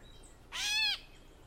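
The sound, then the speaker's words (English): A single drawn-out, nasal mewing call from a gray catbird, rising then falling slightly like a cat's meow, clear against a quiet background with no talking. “The bird is called a catbird for its meow-like call note that we'll listen to here.”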